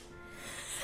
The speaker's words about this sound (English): Bless you.